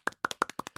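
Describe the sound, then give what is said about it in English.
Sharp hand claps, a clapping sound effect, in a quick, even rhythm, about eight crisp smacks falling in pairs over less than a second, with no voices present. “And could throw some claps and applauses in that bad boy.”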